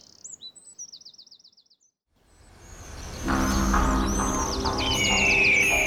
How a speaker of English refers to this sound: Man, look at those birds! How many do you reckon, Walker? I've heard about this. Odd patterns of bird behaviour all across Europe and the US.